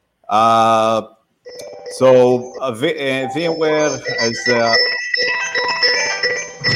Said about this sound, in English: Can you just turn it off, the phone? Yeah, I did. And I'm going to turn off my phone as well at the same time.